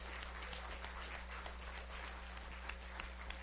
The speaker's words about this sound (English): Come on, let's give him one more hand clap of praise this morning.